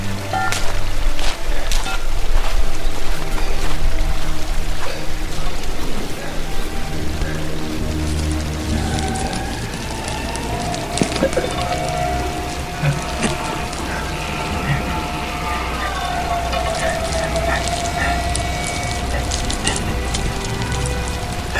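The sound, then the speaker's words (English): Steady rushing river water fills the scene, broken by scattered metallic clinks and scrapes as a pan is dipped in the river and handled, with a faint whistling tone drifting through midway. “I'm gonna take the pan to the river again.”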